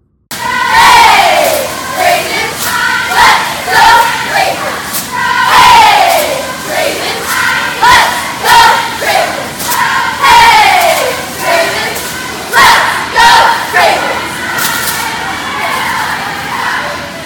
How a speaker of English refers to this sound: But maybe what I'll do is I'll try to get some audio of some of the Oregon teams that are at this NCAA cheer camp. And maybe I'll play them for you on the back end.